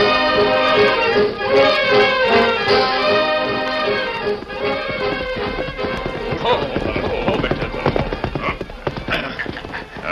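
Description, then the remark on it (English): The hooves of the horses Scout and Victor clip-clop in a steady, uneven rhythm as they are led to a livery stable in town, growing more distinct in the second half, heard over a full, sustained tonal background at moderate loudness. “Me take horses down to livery stable and get them good feed.”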